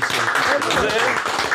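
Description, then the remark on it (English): Hands clapping in a quick, steady patter, applauding a man, blended with overlapping voices talking over the applause. “We gonna clap it up for a man.”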